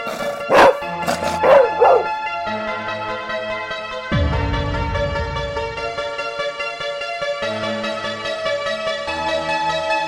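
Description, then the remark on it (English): A dog barks three or four times in quick succession near the start, loud, followed by sustained ringing bell-like tones with no barking. “Can I get a woof woof?”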